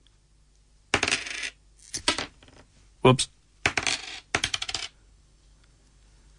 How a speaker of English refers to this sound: So, and there's five coins. So let me just kind of bring the mic down again here. So if you're listening, how much do you think this is? All right. I'll drop the five coins individually now and have a quick listen.